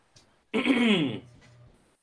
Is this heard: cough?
yes